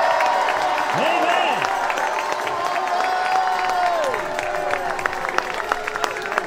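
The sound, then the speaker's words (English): A crowd claps steadily and energetically while many voices shout and cheer together, a loud, continuous wave of celebratory noise with rising and falling whoops throughout, at a celebration of the 100th birthday of the Pentecostal movement and the Azusa Street revival. “The Bible says, clap your hands, all you people, shout unto God with a voice of triumph.”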